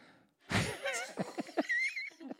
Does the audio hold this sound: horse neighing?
yes